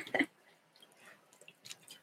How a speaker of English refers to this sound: Let me drink my water.